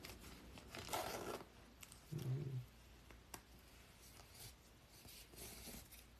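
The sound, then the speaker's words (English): Two short, raspy zipper pulls on a hoodie, roughly a second apart, catching the wearer's beard, fairly quiet, followed by faint rustling and soft clicks with no one speaking. “I caught my beard in the zipper.”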